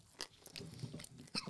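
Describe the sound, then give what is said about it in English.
A crisp crunch as a small corner of hot, spicy food is bitten and chewed, with a few sharp crackling bursts spaced through a short stretch of steady mouth noise. “Ooh, that was a good crunch.”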